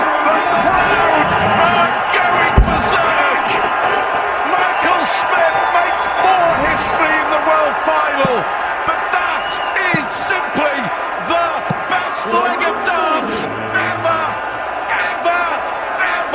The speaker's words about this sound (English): I love darts. The crowd was going bananas, dude.